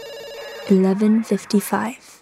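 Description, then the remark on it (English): A telephone at a police post rings briefly with a steady, buzzing tone at 11:55, just before midnight, then a voice takes over, speaking clear for the rest of the moment. “At the time, I was so ready to go, so on edge, that when the phone rang, I nearly jumped out of my seat.”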